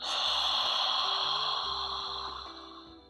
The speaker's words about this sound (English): And then maybe keep your mouth open and take a deep, sharp inhalation through open mouth.